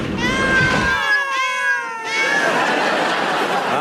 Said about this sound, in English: A room full of cats, just as I thought.